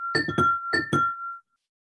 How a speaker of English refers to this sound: And shaking your hands above your head with the sound of two little bells.